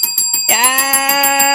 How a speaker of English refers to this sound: Yes. Double ding.